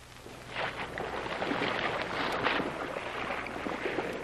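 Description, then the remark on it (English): A rubber boat moves steadily across open water, heading back out to a submarine, with a continuous wash of splashing and wind-blown hiss over a low engine-like hum, unbroken throughout. “They're going back out to the submarine, load the water aboard, deflate the rubber boat, stow it away and sail.”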